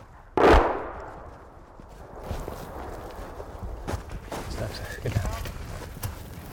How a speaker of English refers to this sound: We've just heard an explosion nearby, so we're just taking a little cover. Right now we're trying to walk along the tree line so that we're not too visible, trying to get to these Ukrainian trenches down the road here.